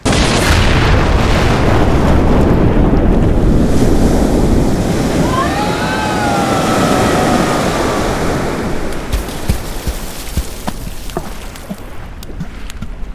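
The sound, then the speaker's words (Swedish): A huge swell wave crashes over boats about 40 to 50 meters away in a sustained, roaring wash of surf and booming water, heavy and loud, with a few faint tonal whines midway before the churning tapers into scattered splashes. “Svallvågen tog dem! Finns absolut ingen chans! Vågen sköljde över dem!”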